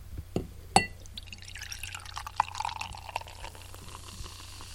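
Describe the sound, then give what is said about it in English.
Dark English-style porter beer glugs and splashes into a glass, opening with a sharp clink and then a steady foamy pour with fizzing bubbles, moderately quiet, with no one talking. “Yeah, be quiet so you guys can hear the pouring there.”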